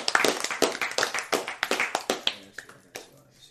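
A burst of sharp hand claps for a woman being introduced, a dozen or so in quick, slightly uneven succession, loud and crisp at first and thinning out toward the end, with no talking.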